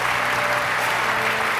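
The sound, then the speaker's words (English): An audience at a church service applauds the several people who raised their hands, a dense, even wash of clapping that holds at a fairly loud, constant level for the whole moment without a break. “For the several that raised their hand, let's give them a round of applause for their courage.”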